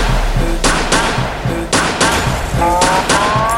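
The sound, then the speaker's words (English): Sharp gunshot sound effects in a dancehall mix crack out repeatedly, about five loud bursts in uneven succession over a thumping music track with a low droning background. “Boy, you get gunshot.”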